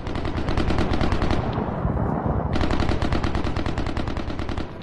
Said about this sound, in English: So people are experiencing the fighting and they're hearing the heavy gunfire.